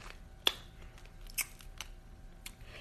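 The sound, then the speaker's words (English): Crisp, crackly crunches of someone biting into a large piece of spicy Popeyes fried chicken, a sharp bite followed by several quieter crackling bursts at uneven intervals, with no talking. “Damn, that chicken sounds good.”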